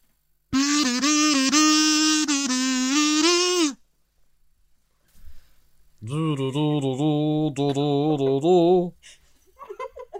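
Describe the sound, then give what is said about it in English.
A voice imitates a kazoo: a buzzy, nasal hum held steady for about three seconds, then after a pause a second, wavering phrase that slides up and down in pitch. “This is the sound of a kazoo.”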